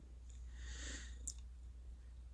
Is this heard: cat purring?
yes